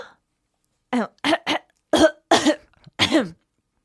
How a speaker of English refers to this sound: Okay. I take this duty very seriously. Not seriously enough not to cough onto the mic.